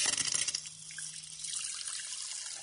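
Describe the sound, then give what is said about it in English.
Carbonated water poured into a glass of red cabbage solution, spluttering and splashing loudly at first, then settling into a steady fizzing and bubbling. No voices. “Wow, well, it obviously spluttered a bit to begin with, but the colour difference is really obvious.”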